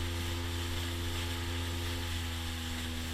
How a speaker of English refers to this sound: we landed in Daru, the capital of Western Province, Papua New Guinea, we boarded a small boat that would take us and 10 other passengers up the Fly River, down the Bituri River, and drop us off at a footpath from which we could walk to Limol Village.